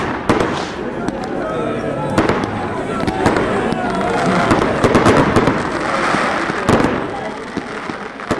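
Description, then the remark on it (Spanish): A flurry of sharp gunshot cracks goes off at irregular intervals, some loud, over a constant roar of crowd commotion and indistinct voices. “Hermanos, oigan esos disparos.”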